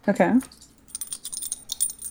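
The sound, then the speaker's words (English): A short vocal sound opens, then three coins clink and rattle in a quick, uneven run of light metallic taps as they are tossed and land. “And a head is even as literally guy's head. I don't know how coins work.”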